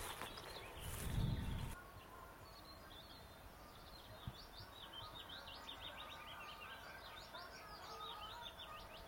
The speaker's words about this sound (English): And as I say that, there is a white throat. Just a little scratchy short call. Or is that a garden warbler? I think that's a garden warbler.